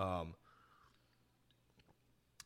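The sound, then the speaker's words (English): A quiet sip from a drink: a brief voiced hum at the start, then soft wet mouth clicks and a small slurping burst near the end. “You know, I'll take another sip just for you”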